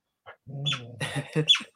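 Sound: dog barking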